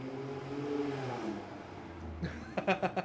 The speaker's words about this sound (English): Car interrupted that one.